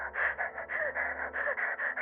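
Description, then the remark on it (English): Rapid, ragged gasping breaths repeat in quick succession, about eight short panicked inhales and exhales, fairly loud, with no talking; a person performing a woman hyperventilating. “And you hear her breathing. And it's getting shorter and faster.”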